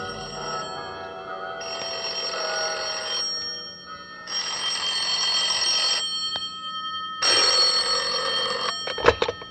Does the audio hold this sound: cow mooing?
no